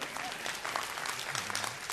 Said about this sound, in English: Oh, hallelujah. Amen. You can clap for that.